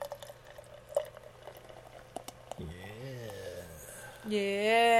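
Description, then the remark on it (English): A few soft clicks and knocks, then a 4.8% Berliner Weisse beer glugs steadily into an FDR glass, the pouring tone rising in pitch as the glass fills and growing louder toward the end. “And the pour. Ooh, and a nice FDR glass.”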